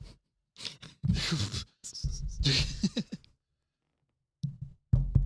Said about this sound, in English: Anytime I sit down, I just beat the shit out of my fucking chair. I hope you can hear that.